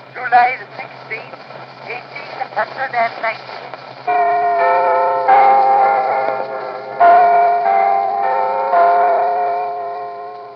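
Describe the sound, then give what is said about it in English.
A crackly, muffled 1890 recording with a steady hum: indistinct murmuring at first, then the bells of Big Ben in London chime several times, each strike ringing out and overlapping the fading tone of the last. “But in terms of sounds from the environment, there's a recording from 1890 of the chiming of Big Ben in London.”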